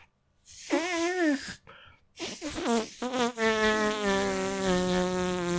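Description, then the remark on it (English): A handmade fart noise blown against a knuckle: a few short, buzzy, wavering blasts, then one long sustained raspy drone, fairly loud with no talking. “Can you make a fart noise with your knuckle?”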